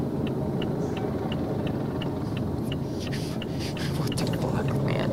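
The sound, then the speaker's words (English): A heavy fire truck engine rumbles steadily as the truck moves, with a faint regular ticking above it and indistinct voices in the background toward the end. “Because you saw the fire trucks moving, following him.”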